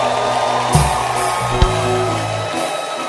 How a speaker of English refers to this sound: So clap your, let's appreciate this Christian pastor. He's a Christian pastor. Oh, clap your hands for the Christian pastor.